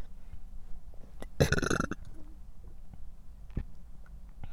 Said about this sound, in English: oh, excuse me, I feel like I have to burp.